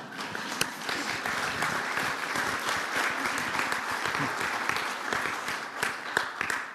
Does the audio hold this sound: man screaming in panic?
no